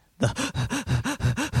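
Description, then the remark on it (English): A voice imitates frantic hyperventilating, with about seven quick, evenly spaced gasping breaths in a rapid rhythm, loud with no speech. “And also hyperventilating to the point where they just stop breathing all together.”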